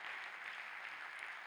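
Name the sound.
audience clapping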